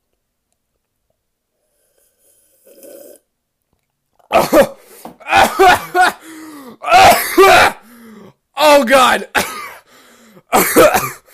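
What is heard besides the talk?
coughing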